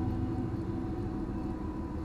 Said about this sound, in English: So there's like a train. You're gonna hear a train. Sorry guys, in the podcast it might drown you out. We'll see.